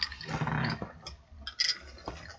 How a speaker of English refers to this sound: So this is the guava iced green tea from Starbucks, the little barista place. And it's really good. Ice. Hear that ice. Yeah, on ice. Delicious. Clink it up again.